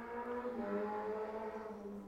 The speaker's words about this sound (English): Sorry, we just had a stupid car pass by.